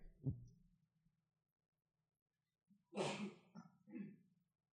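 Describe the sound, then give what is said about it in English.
A single sharp sneeze bursts out partway through, followed by a couple of short breathy sounds; a brief low vocal noise comes earlier, with quiet stretches in between. “Bless you.”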